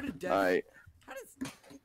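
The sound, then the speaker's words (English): A pet dog indoors lets out one loud bark, a short harmonic burst, followed by people talking quietly. “Hey, what the dog? Chill.”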